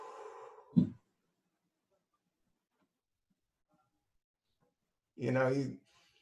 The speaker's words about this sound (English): And I just take it all the way in, like a big bong hit, man. I just go all in. And then right when you get up to your chest, there's more in your lower diaphragm. You can just keep going. And then you just do a slow blow out the mouth.